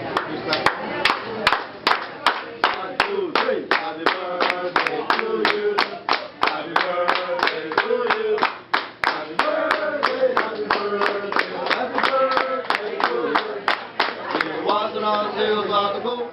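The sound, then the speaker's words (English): Restaurant wait staff at Benihana perform the birthday clapping song: several voices sing or chant in unison over steady, rhythmic hand claps that keep a brisk, even beat throughout, loud and lively. “You know, they'd have their wait staff with out the there clapping, doing right? the clapping song.”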